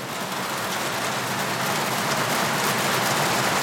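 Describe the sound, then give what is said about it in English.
Steady rain patters on an overhead skylight, a dense, even hiss of countless drops, fairly loud, with no voices. “I'm going to record the sound of the rain.”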